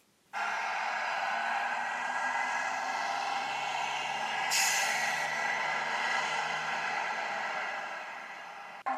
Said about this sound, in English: Here's our bus.